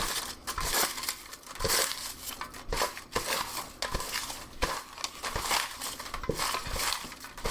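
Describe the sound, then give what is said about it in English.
Papery rustling and crinkling as slips of listener suggestions are shuffled around in a fishbowl, a steady close-up stirring with occasional sharper taps and clinks against glass, no voices. “We put your suggestions in a bowl of fish, and now we're gonna pull one.”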